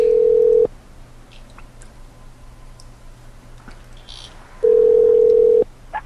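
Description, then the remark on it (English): A telephone line tone sounds twice, each a steady electronic hum lasting about a second, separated by several seconds of quiet line noise with faint clicks and beeps as a number is dialed to call someone back. “Call him back and be insulted.”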